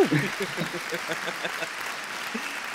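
Audience applause for a sports journalist being introduced: a dense, steady wash of many hands clapping at an even level, with a brief voiced sound at the very start.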